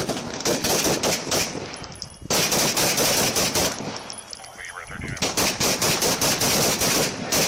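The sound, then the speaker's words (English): Rapid bursts of loud gunfire crack repeatedly, with brief pauses between volleys, as multiple shots are exchanged between a man firing and three police officers returning fire. “shot and killed as gunfire was exchanged”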